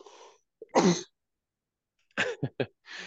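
A single sharp, explosive sneeze bursts out after a brief intake of breath, followed by a quick series of short, rough throat-clearing sounds. No one speaks.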